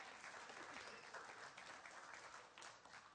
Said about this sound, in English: Can you clap?